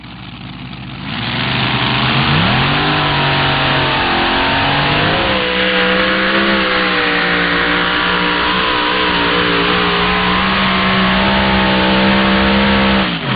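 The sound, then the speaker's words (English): The loud, powerful outboard-mounted twin Hemi engines of Vern Huser's pulling tractor 'Say Goodbye' start up and rev, pitch climbing and shifting before settling into a steady, heavy, sustained roar, with no talking. “That'll bring up Vern Huser, longtime puller out of Ankeny, Iowa, running a similar engine combination to that of Jack Kielmeyer, the outboard-mounted twin Hemis.”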